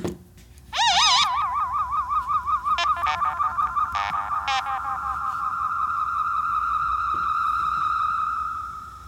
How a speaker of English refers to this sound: Here's the theme song, guys.